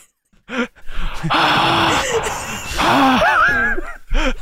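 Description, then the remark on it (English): A voice imitates heavy, rasping breathing behind a mask: a few short huffs, then long, drawn-out breaths with a groaning, voiced edge, fairly loud and with no talk around it. “You hear him breathing behind the mask.”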